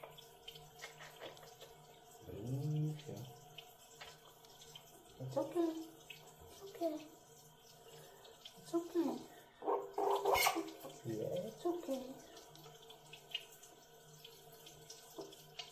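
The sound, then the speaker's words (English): Tap water runs steadily throughout, with splashing and bursts of bathing noise as a dog is bathed in plain medium-temperature water with no soap, while the dog yelps and whines in short cries; a person talks softly in between. “It's just pure water, no soap or anything.”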